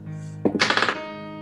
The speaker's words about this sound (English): Okay, you hear. Galen does not hear. Galen's otherwise occupied in the moment. Does not pay attention, but you hear the knock.